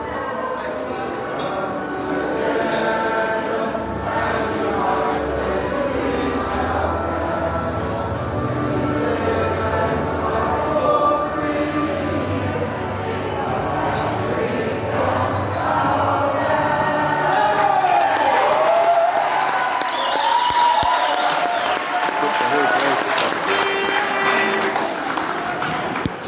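A packed crowd in The Griffin pub in Swansea roars and murmurs on a Saturday morning while watching the Rugby World Cup final, overlapping voices and cheers building steadily, with occasional glass clinks and scattered claps in the dense, continuous hubbub.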